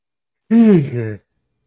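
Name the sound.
a person yawning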